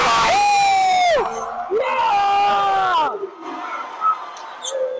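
Two long, loud, excited yells, each held then dropping off in pitch, followed by quieter background noise, made by the game's commentators after a corner three-point shot.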